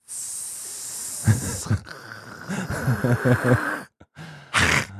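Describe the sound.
A person makes a long, breathy hissing sound in imitation of a snake speaking snake speak (Parseltongue, as in Harry Potter), with vocal murmuring in the middle and a final sharp hiss burst at the end.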